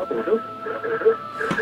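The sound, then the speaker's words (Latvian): A caller's radio set echoing the live broadcast back through a phone line into the studio: muffled, tinny, narrow-band voices and hum at a steady moderate level, with no clear words. “Lūgums izslēgt radioaparātu, lai neveidojas tā atbalsts ēterā.”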